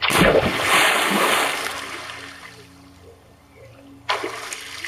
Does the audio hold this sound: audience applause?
no